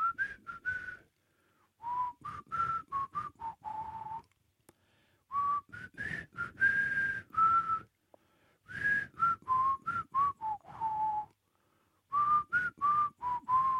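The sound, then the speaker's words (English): A person whistles a TV theme tune alone, in four short phrases of quick, bright notes separated by brief pauses, clear throughout. “how would you whistle the Crossroads theme?”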